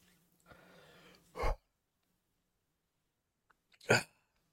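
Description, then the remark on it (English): Two sharp, abrupt hiccups about two and a half seconds apart, fairly loud, the first preceded by a soft breathy rustle, with silence between them and no talking. “I mean, I've got the hiccups going.”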